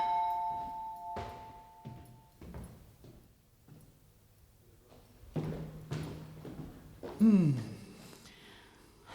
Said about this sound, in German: es war gerade kurz nach 19 Uhr, standen die vier in dem Apartmenthaus vor ihrer Haustür und klingelten.